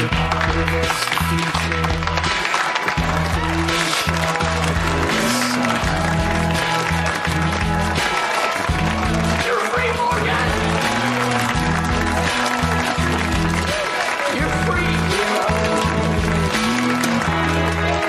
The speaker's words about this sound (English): All right, they're doing the slow clap for Morgan. He finally made it. He's out of the Bymore.